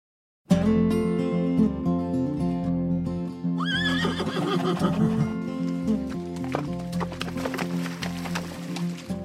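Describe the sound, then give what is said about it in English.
A horse lets out a loud whinny that rises and quavers mid-clip, with hooves clip-clopping in a busy rhythm through the second half. “Riding horses is a fun date. Horses are majestic, and riding them is fun, especially on trails you've never been on before.”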